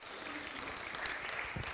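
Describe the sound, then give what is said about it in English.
An audience applauding the readers after a Bible reading, a steady patter of many hands clapping together at an even level for a short burst, with no one speaking over it. “Well done, guys. Very good. Good reading. Clap them.”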